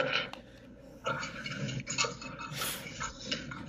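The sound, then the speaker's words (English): A brand-new Creality Ender 3 Pro 3D printer's mechanism whirs and clatters continuously, with small irregular ticks and clicks over a steady mechanical hum, and no voices. “This is a $200 3D printer.”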